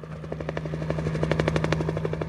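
A helicopter flying overhead, its rotor blades thudding in a fast, steady rhythm over a constant low engine drone. Loud and continuous, with no voices.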